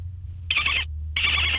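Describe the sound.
A woman, a dolphin trainer, imitates a dolphin call as her party trick, with two shrill, squeaky trilling bursts, each about a third of a second long, separated by a short pause over a steady low hum.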